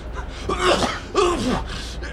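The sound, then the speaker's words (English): A person does a gravelly imitation of a dragon coughing out a tiny frog-sized condom: two rough, throaty hacks about half a second apart, fairly loud, with no words spoken. “The dragon coughs out a tiny frog-sized condom.”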